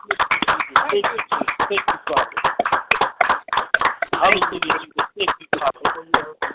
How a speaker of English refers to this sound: And let's just give God a hand clap right now. Amen. Hallelujah. Amen. Amen.